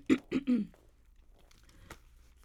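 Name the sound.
throat clearing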